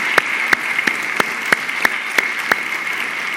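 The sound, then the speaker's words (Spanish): Audience applause of welcome at a church gathering for the day's guests, heard as steady, evenly spaced claps about three per second over a constant bright hiss, with no one speaking. “Vamos a darles un fuerte aplauso de bienvenida.”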